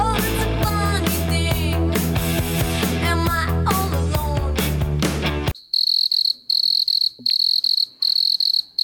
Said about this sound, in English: I gave myself the crickets because it was terrible.